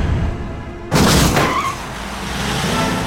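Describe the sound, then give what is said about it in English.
A sudden, loud crashing thud as two monster trucks, after jumping together 165 feet over a fountain, slam down onto landing ramps, cutting through a steady background roar and leaving a rumbling engine drone behind it. “Both trucks have hit the landing ramps!”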